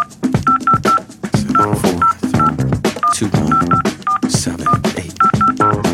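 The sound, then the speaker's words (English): A telephone number being dialed: a quick run of short keypad tones, roughly a dozen beeps at steady pitches, over busy background music or sound. “Let's get a hold of him. All right. Got my paper right here. And yeah, find this number.”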